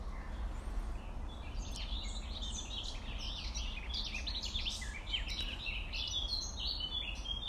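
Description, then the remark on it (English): Busy, overlapping birdsong with many chirps and trills from several birds, recorded outdoors on a walk in summer, set against a steady outdoor rumble of wind or traffic; no one speaks. “And I thought this bird song was too good to miss.”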